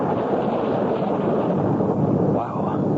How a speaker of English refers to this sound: Dumb windshield wipers are worse than nothing. Just slosh the rain from one side to the other.